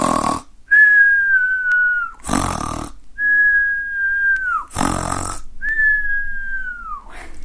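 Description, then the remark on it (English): A person imitates loud snoring: three rasping snorts, each followed by a long, slightly falling whistle, repeating in a steady rhythm with no talking. “Wow, that is some noisy snoring.”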